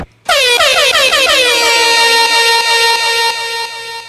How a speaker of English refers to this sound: Give me a rewind. Yeah, man. Give me an air horn.